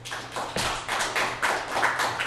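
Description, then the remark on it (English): An audience claps their hands to show they can hear the speaker, in a steady, continuous patter of many overlapping claps, bright and fairly loud, with no voices. “Clap your hands if you can hear me.”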